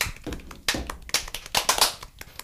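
A few people clap their hands in a short, uneven burst of sharp, overlapping smacks that rise and then thin out over a couple of seconds, with no talking.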